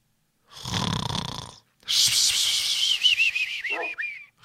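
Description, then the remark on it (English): A person imitates a snore: a rough, rumbling inhale, a short pause, then a long breathy exhale with a high whistling tone that wavers and slides downward. “I got my snoring abilities need some practice.”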